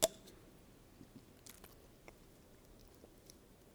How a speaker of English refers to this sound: Get another little water here.